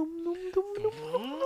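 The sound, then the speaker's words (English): A voice imitates a flashback music effect, humming a wavering, sustained tone that wobbles and then slides upward in pitch over about a second and a half. “Can we get the flashback music?”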